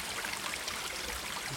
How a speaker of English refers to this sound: Just sheltering under some trees here that are bordering this little brook. So this water must flow from the Holy Well.